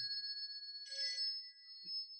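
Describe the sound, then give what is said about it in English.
A faint telephone bell rings with a steady metallic tone, swelling into a brief brighter jangle midway, with no voices present. “Oh, the phone. I better turn this thing off.”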